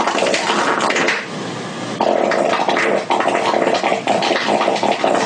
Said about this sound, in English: By finding the frequency of a tone, or in this case, a fart, one can remove the sound or boost it